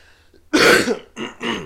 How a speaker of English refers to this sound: I keep coughing. God.